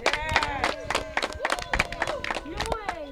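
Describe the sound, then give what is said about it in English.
A crowd claps steadily and densely for several seconds, with voices cheering and calling out over the applause, as sponsors of a sports event are acknowledged. The sound is loud throughout. “Honorable Eric Evelyn, give him a clap.”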